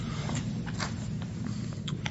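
A book page being turned, heard as a few soft, brief papery rustles and crinkles spread over two seconds above a steady low hum, with no one speaking.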